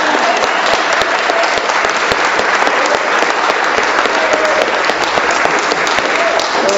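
A roomful of people in a church applauds warmly and steadily, dense clapping for several seconds, with no one speaking over it.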